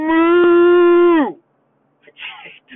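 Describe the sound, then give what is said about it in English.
A person imitates a cow with one long, loud, steady moo that sags in pitch as it trails off, followed after a short pause by a few brief, quieter vocal sounds. “All right, I guess I would do a cow. Moo! Moo!”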